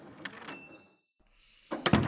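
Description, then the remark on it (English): A classroom door latch clicks and thumps twice, then after a short pause the door swings open to the outside and a louder rush of outdoor air and ambient noise floods in. Nobody speaks. “Man, it's a good thing that my classroom is like right next to the doors outside.”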